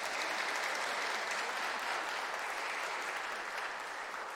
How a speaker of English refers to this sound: So could we give them guys a round of applause?